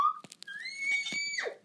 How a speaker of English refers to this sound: That was a weird scream.